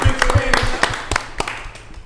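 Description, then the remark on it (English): Sharp hand claps land in a quick, steady rhythm for about two seconds, fairly loud, with low thumping beats underneath. “Well, Lonnie B, clap it up.”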